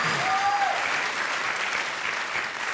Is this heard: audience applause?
yes